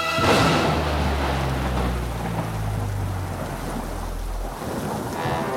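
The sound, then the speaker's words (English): A steady downpour of rain with deep, rolling thunder rumbling low underneath, loud throughout, with no voices present. “Four unsuspecting suspects at an over-the-top creepy old house and one conveniently bad storm is the recipe for a murder mystery you won't forget.”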